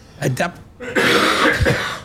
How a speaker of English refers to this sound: Sorry, I coughed over you then. Sorry.